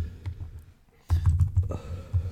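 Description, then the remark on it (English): Quick, uneven bursts of typing on a computer keyboard during an online search, with soft key clicks pausing briefly before a louder flurry of keystrokes resumes. “I like that you can hear me typing.”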